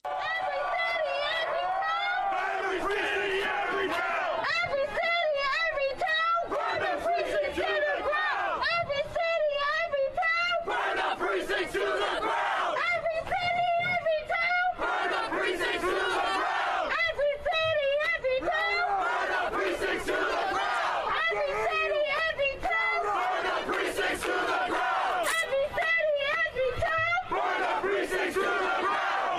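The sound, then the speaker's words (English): A protest crowd of a few hundred at Barclays Center, Atlantic Avenue, downtown Brooklyn, shouts rhythmic chants in unison, including "burn the precinct to the ground", loud and continuous, with voices rising and falling in repeated bursts throughout. “You go to Barclays Center, Atlantic Avenue, downtown Brooklyn, And they were out in force last night, a few hundred. And listen to what they were screaming.”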